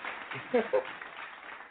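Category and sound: human body sound, hand clapping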